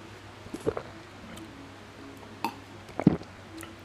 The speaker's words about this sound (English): Sorry, I burped.